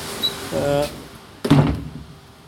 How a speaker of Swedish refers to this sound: Jag stänger den här dörren för de